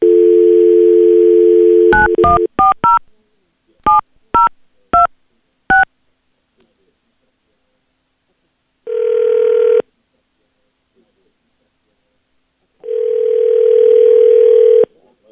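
A steady telephone dial tone cuts off into a quick run of seven or eight short, two-pitched touch-tone beeps, then silence, then two longer buzzing ringback tones separated by a pause, as B93.7 radio hosts place a call live on air.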